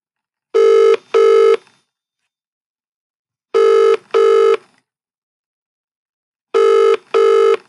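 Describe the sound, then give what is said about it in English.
A telephone ringback tone heard from the caller's end as a call is placed to get someone back on the phone, sounding in three double-ring pairs with pauses of silence between them, steady and fairly loud with no voices. “Right, let's get Billy back on the phone.”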